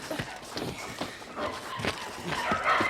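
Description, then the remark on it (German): Several dogs in a kennel bark over and over in quick, overlapping bursts as they are being freed, steady in loudness, with a busy background of rustling and movement and no one speaking. “Los, wir befreien alle Hunde, die da sind.”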